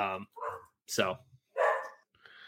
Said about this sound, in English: And I have a dog barking, so I'll let I'll circle back on Blaine.